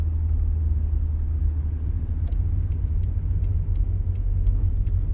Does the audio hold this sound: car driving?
yes